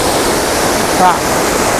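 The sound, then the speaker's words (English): Steady, loud rushing of river water fills the whole recording, a dense unbroken roar, with a brief faint voice-like tone rising out of it near the middle. “And if I cross the river here, there's absolutely no way back to where I was.”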